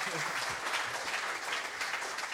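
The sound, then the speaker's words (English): Steady applause from an audience for a quiz contestant who scored 10, a dense patter of many hands clapping at once that holds at an even, fairly loud level throughout, with no voices standing out. “Oh, round of applause.”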